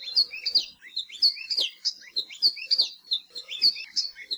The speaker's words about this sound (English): Nowadays, the best place to see alauahio and hear their warbling song is at Hosmer's Grove at Haleakala National Park and also Polipoli State Park.